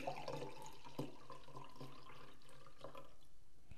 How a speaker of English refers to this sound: You hear that? You hear that? That was a nice pour of sangria.